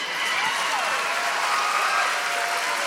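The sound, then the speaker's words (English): Steady applause from an audience, dense overlapping claps holding an even loudness throughout, with faint murmuring voices mixed underneath. “By the way, not enough people are clapping.”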